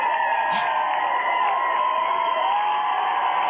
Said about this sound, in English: Well, the women screaming outside seem to like it.